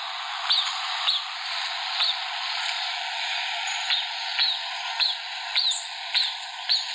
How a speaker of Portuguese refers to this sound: Agora, presta atenção nesse canto lindo que a jacutinga tem. Nós vamos ouvir um trechinho.